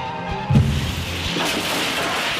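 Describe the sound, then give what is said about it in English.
A taxi smashes into a tree at full speed with a sudden, heavy booming crash, followed by a rough, noisy rumble that carries on loudly for a couple of seconds. “The taxi has smashed into a tree at full speed.”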